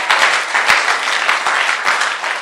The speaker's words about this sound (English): You may be seated, please. It's a good place to clap for Jesus as you are sitting. Don't let clapping be difficult for you, that we have to always beg you to clap for Jesus.